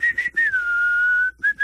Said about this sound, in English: No, no, I just want to get an idea of what your whistling sounds like.